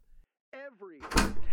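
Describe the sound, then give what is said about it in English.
A creaking, whiny tone rises and bends, then gives way to a loud rattling clatter as a door is pulled open, the noise continuing to the end. “Come on, dude, just get the door, please.”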